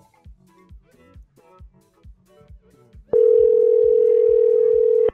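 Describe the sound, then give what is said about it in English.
A loud, steady telephone dial tone starts abruptly partway through and holds for about two seconds. Before it, soft rhythmic low thumps pulse in the background. “Pick up the damn phone.”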